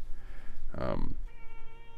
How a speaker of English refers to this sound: Got a little cat in here. Hi, a little cameo. Nobody invited you, bud.